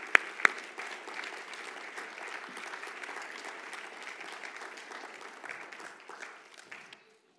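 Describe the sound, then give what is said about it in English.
An audience applauds the graduates at a graduation ceremony, steadily for about seven seconds, a dense wash of many hands clapping at even loudness, with a couple of sharp louder claps near the start before it fades out abruptly. “If you believe that, why don't you let them know by a hand clap of appreciation for our graduates.”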